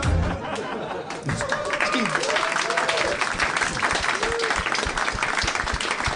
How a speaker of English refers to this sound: You know, if you don't feel it deserves an applause, you don't need to applaud. I'm just saying.